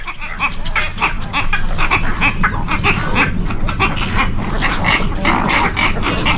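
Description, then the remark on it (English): A noisy nesting colony of cattle egrets at nesting sites in the southeastern U.S. and South America, many birds croaking and grunting at once in a dense, continuous chorus, with rough guttural calls overlapping throughout and a steady high hiss behind them. “Here's what it sounds like on its nesting sites in the southeastern U.S. and South America.”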